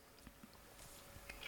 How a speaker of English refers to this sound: And I just chewed an ice cube.